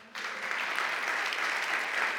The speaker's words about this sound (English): Guys, just can you clap for them?